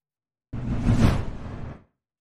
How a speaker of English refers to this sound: Hey, even the swoosh was able to catch up with Mike this time.